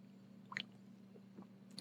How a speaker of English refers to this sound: So cheers. Let me have a sip.